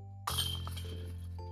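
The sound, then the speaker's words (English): A disc slams into a disc golf basket with new chains on a bogey putt, setting off a loud burst of metallic chain rattling and clinking that rings on and fades over about a second. No one speaks. “It's these new chains, man. They're so slick.”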